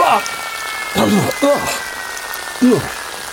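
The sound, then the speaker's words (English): A steady, hissing rush of water sprays from an emergency fire hose, while a person lets out several short sputtering, gasping vocal bursts over the top. “Some cold water? Panic strain. Emergency fire hose.”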